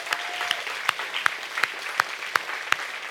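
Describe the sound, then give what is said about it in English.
A church audience applauds, giving the Lord a hand after five people went public with their faith. A dense wash of clapping with a steady rhythmic clap beating out about three times a second, sustained throughout with no talking. “So can we just give the Lord a hand over?”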